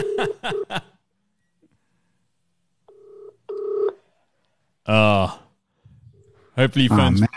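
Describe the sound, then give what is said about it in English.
A quick series of phone dialing beeps, then a pause and a two-pulse ringing tone on the line, followed by bursts of voices near the end. “Hopefully we're not playing the missed call game.”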